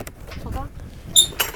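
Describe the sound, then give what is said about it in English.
A squeaky gate creaks open in a few strained, wavering groans, ending in a brief shrill, high-pitched squeal followed by a short scrape. “Right, squeaky gate for you, squeaky Derrish gate.”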